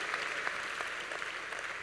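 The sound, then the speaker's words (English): An audience at Qodesh Family Church claps for King David, a dense, steady wash of many hands applauding at once, without pause for the whole short moment. “Clap for King David.”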